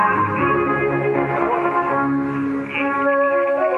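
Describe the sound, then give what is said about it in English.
A steady, muffled radio broadcast of tonal music comes through a narrow, tinny band with a brief dip in strength partway through, the typical fading, noise and poor quality of analog shortwave reception, on a shortwave link to Kotka in Finland. “So your typical fading and noise and bad quality that comes on the shortwave.”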